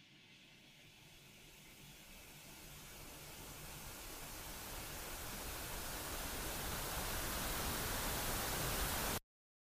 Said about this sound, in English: The interstellar soup of radio waves that play out as static on a television that seemingly has nothing else to broadcast.